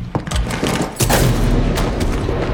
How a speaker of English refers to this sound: And from the sound of gunfire, I'd say at least one of your two judges is still alive.